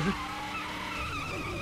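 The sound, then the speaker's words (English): A Hummer accelerates hard as it drives away, tires squealing and skidding, a steady, fairly loud rush of engine and rubber lasting under two seconds, with no one talking. “All right, so now they're taking the Hummer, and they're trying to get away.”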